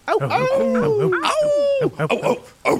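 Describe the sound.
Human voices mimic dogs, with drawn-out howling glides and short yipping barks layered over each other, loud and close, as if several people are joining in at once.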